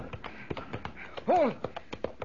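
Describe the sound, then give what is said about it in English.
Horse hooves gallop in a quick, steady run of sharp clops as the horse dashes into the flames of a burning castle, with a brief arching, high-pitched cry rising and falling over the hoofbeats partway through. “He's dashing right into the flames. The horse.”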